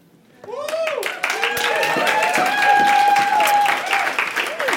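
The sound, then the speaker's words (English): A large audience bursts into sustained applause and cheering after a brief quiet start, welcoming the speaker's wife onto the stage, with dense clapping and whooping voices rising over the noise, loud and continuous throughout. “It's kind of cool because, like, wherever we go, she gets that kind of applause and welcome, and, you know, I don't.”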